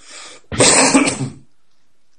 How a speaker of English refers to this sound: Sorry, I've got a bit of a cough, and for any youngsters listening, that's what you get for smoking 60 Capstan full strength a day for 30 years.